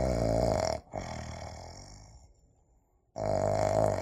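A little pig snores loudly as it goes back to sleep: a long, rasping, grunting snore that fades out, a brief quiet pause, then another deep snore starts up again.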